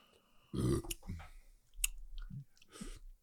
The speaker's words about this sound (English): Damn. I shouldn't burp in the mic, I guess.